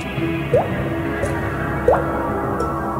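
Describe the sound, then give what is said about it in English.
Slow, echoing drips of blood fall every second or so, two clear and a couple fainter, over a dark, rumbling low drone, a sound effect of a dungeon. No voices. “That's a spooky, spooky dungeon, blood dripping.”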